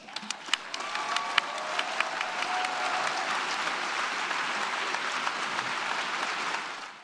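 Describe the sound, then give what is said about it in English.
Sustained applause from a sizable crowd at the UN after a speech, dense clapping filling the space with a few sharper claps standing out early, holding steady for several seconds before fading at the end. “Considering the applause she got before, this wasn't good.”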